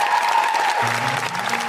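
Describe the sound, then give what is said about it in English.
A crowd claps steadily in a dense, loud burst of applause, with a faint low tone sounding underneath partway through. “And if anybody feels the same way, I think give a massive round of applause to the Guilty Feminist.”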